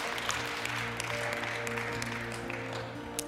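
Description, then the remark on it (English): An audience gives the Lord a hand clap after a prayer, dense, sustained applause, many overlapping hand claps forming a steady crackling wash for the whole stretch, with a low steady tone humming underneath. “Why don't you give the Lord a hand clap?”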